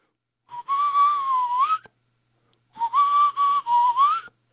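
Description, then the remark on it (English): Two sustained, fairly loud whistles, each a wavering tone that bends upward at the end, separated by a brief silence, with no talking; someone whistles to call back a rat that is running away. “Well, he's running away again. Quickly, quickly, whistle.”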